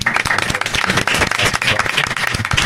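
An audience breaks into sustained applause, a dense, steady wash of many hands clapping at once, fairly loud throughout with no voices standing out.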